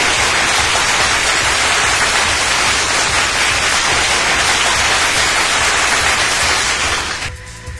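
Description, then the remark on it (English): A recorded applause sound effect played for prize winners: a steady, dense wash of clapping from a large crowd, loud and unbroken for about seven seconds before it thins out and fades at the end. No voices. “An extended round of applause for everyone, because I didn't actually play any applause for any of you who won those last two prizes.”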